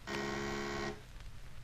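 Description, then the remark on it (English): An intercom buzzer, used to buzz the constable on duty, sounds once in a single steady, harsh, rasping buzz lasting just under a second, loud and even, then cuts off, leaving a low hum. “Now, just buzz that constable.”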